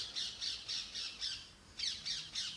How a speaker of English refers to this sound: Those are the parrots. That's an angry parrot. Probably seen one of our cats.